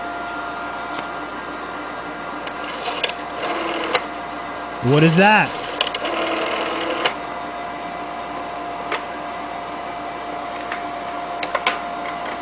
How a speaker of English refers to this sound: Rotary? Oh, yeah, phone. Yeah, phone. The rotary phone. Big dial phone. You put your finger in, and bring it back to the top, and you got to let it go.